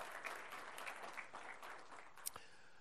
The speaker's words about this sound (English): We want to welcome all those who are newcomers to Grace Crossing Church. Would you join me by an expression of applause, and let's welcome all those that are new to Grace Crossing Church.